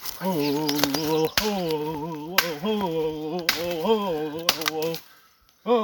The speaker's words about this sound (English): Do some tree knocks. See if we can get a response.